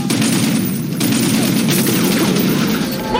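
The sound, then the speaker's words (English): Dense, continuous gunfire crackles throughout from the war film Black Hawk Down: rapid overlapping shots and bursts with heavy rumbling booms underneath, loud and chaotic, with no clear voices. “Oh, they're shooting at us! We'll shoot back!”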